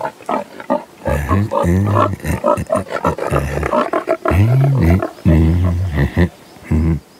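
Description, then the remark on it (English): Pigs grunt and squeal loudly in a continuous string of throaty, rising-and-falling calls, with only brief gaps between them. “Aye, aye, pigs.”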